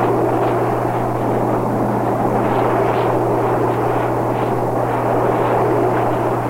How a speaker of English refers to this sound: I'd like you to hear one of the most powerful sounds in nature, the ocean surf.